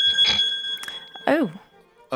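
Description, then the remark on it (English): A phone rings with an incoming call, a steady, high electronic tone that holds for about a second, then stops as voices briefly speak over and after it. “I'm getting a phone call.”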